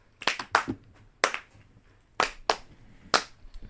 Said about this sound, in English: This one's supposed to have clapping. So the audience usually claps. So you're the audience. So clap, clap. I need some help here.